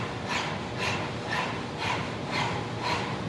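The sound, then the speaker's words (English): Forceful open-mouthed panting like a dog with the tongue out, breathing from the diaphragm in a practice called dog breath: about seven breathy, hissing bursts in a steady, quick rhythm of roughly two per second, with no talking. “Stick your tongue out and breathe directly from the diaphragm.”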